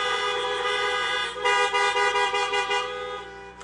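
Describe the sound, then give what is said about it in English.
An audience honks car horns for a worship team: several horns honk together in a sustained, overlapping blare, with a steady tone at first and then pulsing, rhythmic toots as more horns join in before fading out. “Can we give them a big honk for this morning?”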